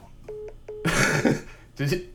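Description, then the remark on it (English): Two short electronic beeps, then a harsh, drawn-out cough and a second shorter cough from a male caller, thin and filtered over a telephone line, fairly loud. “He's leanly coughing.”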